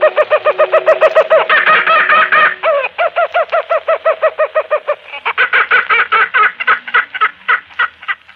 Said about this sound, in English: You are listening to the call of the bird known as Laughing Jackass or Kookaburra, one of the many sounds and voices recorded inside Australia